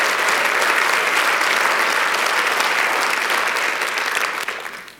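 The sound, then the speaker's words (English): A large audience claps steadily in dense, sustained applause that stays loud for several seconds before tapering off at the end, with no one speaking over it. “You see, we clap and I'm thankful. Thank you for celebrating that.”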